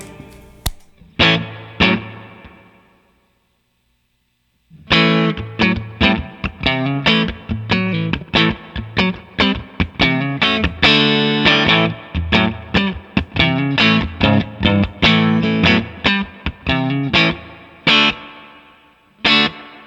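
An electric guitar played through a VVco Ghostly Reverb pedal, heavily effected and slightly distorted, with a few opening notes, a brief pause, then steady rhythmic strumming that fills the rest with washy sustain.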